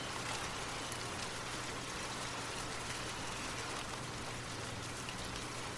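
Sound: gentle rain falling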